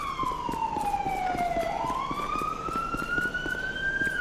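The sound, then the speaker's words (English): A police car siren wails steadily, its pitch sliding down and then rising again in a long continuous sweep, loud against a busy, rumbling background. “I don't know why people won't ever turn their sirens off when they do stuff like that, but okay.”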